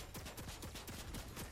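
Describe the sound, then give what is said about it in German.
Rapid automatic gunfire from a video game turret, a dense rattling burst of repeated shots at a steady fast rhythm, fairly loud, with no talking. “Ja, Digga, das geschützt einfach, ne? Geschützt lasert zu sehr.”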